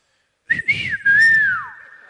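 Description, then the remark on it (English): A short, sharp human whistle in two quick rising-falling phrases, the second one longer and sliding down at the end, as a husband calls his wife. Fairly loud, with no talking. “Because some husbands call their wife with whistle.”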